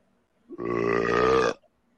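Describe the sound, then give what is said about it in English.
A single loud fart, one sustained buzzy, tonal blast lasting about a second before cutting off abruptly, with silence around it and no one speaking. “I got a fart for him. It's a real one.”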